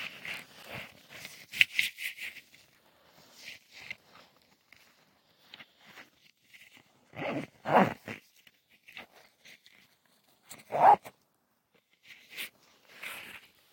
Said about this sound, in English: hold on, I gotta put the phone down and zip up this pocket.